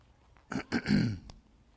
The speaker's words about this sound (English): I hope you'll excuse me if I clear my throat once in a while. I've got a bit of allergy.